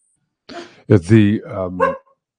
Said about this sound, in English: Sorry, got the dog in the background.